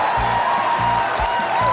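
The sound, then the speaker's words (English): Loud, sustained applause from a large crowd as the Labour Party leadership result is announced and Ed Miliband becomes leader, a dense, steady wash of clapping with no pauses, and a few low thumps recurring underneath. “The reaction of the audience said it all, even if the final number got lost in the sound of applause.”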